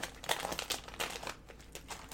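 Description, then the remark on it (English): A candy wrapper crinkles in a quick, irregular flurry of crackly rustles lasting a couple of seconds, fairly soft, with no voices. “Don't tell me to not eat your candy.”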